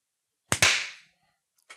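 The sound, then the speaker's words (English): A single sharp hand clap with a slightly doubled attack and a bright ringing tail that fades over about half a second, followed by a faint short click. No one speaks. “Oh, that was a good clap.”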